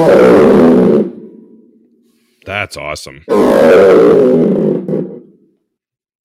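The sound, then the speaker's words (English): Two loud, rasping growls from a Ludwig Lion's Roar, a square friction drum played by pulling its string, imitate a lion's roar. Each lasts about a second and trails off, with a brief spoken exclamation between them. “And when you pull the string on this, it sounds like a lion.”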